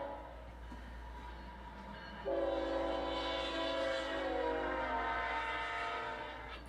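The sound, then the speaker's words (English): The horn of train QO32, running light engines, blows for the Edgewood grade crossing: after a couple of seconds of low rumble, a loud multi-tone blast starts and holds steadily for several seconds. “QO32 was blowing for the Edgewood crossing, right behind me.”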